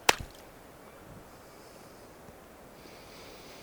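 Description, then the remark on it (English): A person standing with one foot on land puts the other foot into water: a sharp splash once at the start, followed by a soft, steady watery wash and faint sloshing for a few seconds, with no talking. “And can you hear this other foot in the water?”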